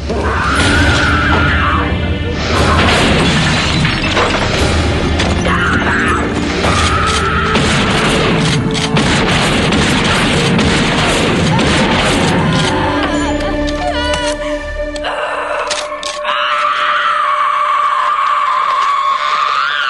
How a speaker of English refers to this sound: frees the shotgun from him, and just starts unloading shotgun blasts into him while, like, doing this incredibly primal scream.